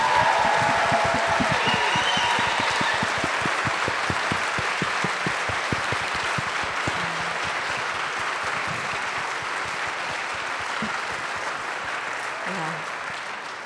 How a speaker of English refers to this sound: So once again, please give a big round of applause to all of our panelists tonight.